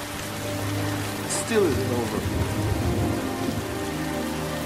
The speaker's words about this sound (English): See how good that scene was in the rain. They were arguing in the rain. And what the director was trying to do there was to use the rain to wash away the tears.